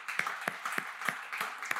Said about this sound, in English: You come and look at, yeah, clap for yourself, seriously.